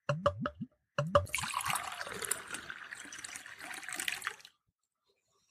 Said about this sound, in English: I think I've heard that before, but it's going to be an ideal time to try it, to sample it. So I'm going to pour it into a glass.